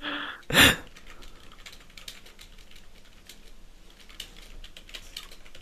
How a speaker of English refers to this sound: Apologies if people can hear my lovely typing whilst we've got a quite dramatic scene going on A View to a Kill.